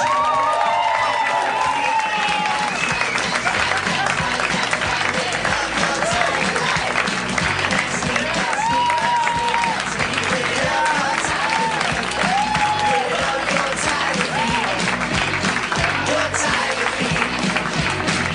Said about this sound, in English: Please keep the emotions high and the hands clapping for the mayor of Harmontown, Mr. Dan Harmon.